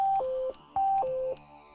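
A phone rings with an incoming call as an SUV is turned around, a two-note electronic tone, a higher beep dropping to a lower one, repeated twice in quick succession. It is fairly loud and clear, with no voices.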